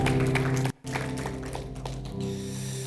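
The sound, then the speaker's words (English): A church audience claps their hands in praise to Jesus in a dense, steady wash of applause over sustained low droning tones, broken by a brief near-silent gap before resuming just as strongly. “And if you believe that, church, come on, clap your hands. Can you give them some praise?”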